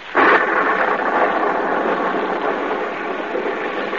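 thunder and rain storm

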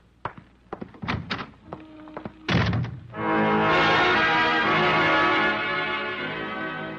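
door closing shut

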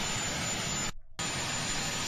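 helicopter engine running

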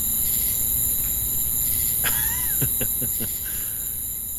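crickets chirping

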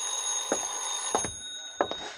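telephone ringing

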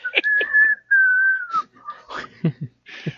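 whistling a melody

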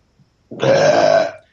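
burp

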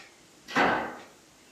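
door banging shut

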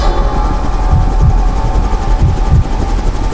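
helicopter flying

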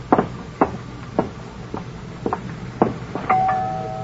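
doorbell ringing

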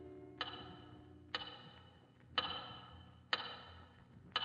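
big clock ticking

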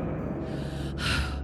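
heavy panting

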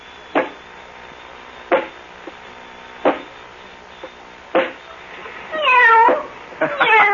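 kitten meowing

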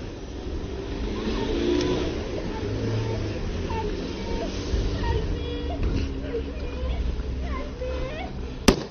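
car driving away

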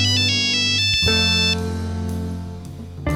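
phone ringtone

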